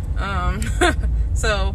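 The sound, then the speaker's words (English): A steady low rumble fills the inside of a car while a person talks, the muffled engine and road hum continuing underneath the voice. “I am in my car.”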